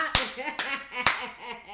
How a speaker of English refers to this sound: Well, you clapped pretty good just now.